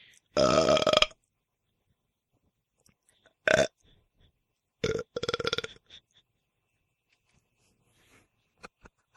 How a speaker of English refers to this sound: Yeah, but Coke is notorious. It's like what it does. Like, I never burp unless I'm drinking Coke.